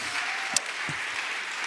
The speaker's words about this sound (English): Big round of applause.